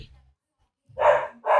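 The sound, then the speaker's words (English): A dog named Teddy barks twice in quick succession in a song, loud, after a stretch of near silence. “Teddy's barking in this, right?”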